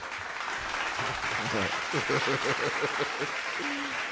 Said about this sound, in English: Clap, clap, clap, clap. Yeah, you want the clap? Yeah, yeah. You want the clap?